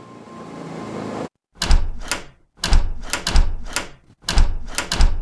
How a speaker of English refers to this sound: She was all alone. The library is big. And she was the last to leave. As she was cleaning her desk, she heard the drawers in her office opening and closing by themselves.